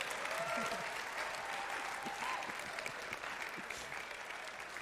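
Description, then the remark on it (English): Steady audience applause fills the whole stretch, a dense wash of many hands clapping at an even, sustained level without pause. “Can you all clap for my friend Karis?”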